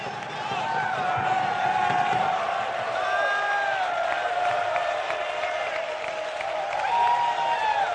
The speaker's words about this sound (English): And there's people clapping their hands. And there's people leaping for joy. And there's people dancing before the Lord.